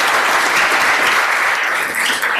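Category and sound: crowd, audience applause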